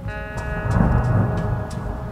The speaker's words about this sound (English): A distant boom broke me from my trance. Thunder. It was angry and vengeful, full of malice and ready to judge.